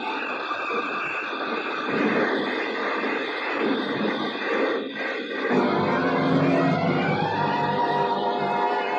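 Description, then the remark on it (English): A convertible car skids on gravel, sliding sideways toward a cliff, in a loud, continuous gritty rush of crunching and scraping, shifting partway through into a heavier, lower grinding rumble as it slides on. No one speaks. “The car skidded on gravel and slid sideways toward the cliff.”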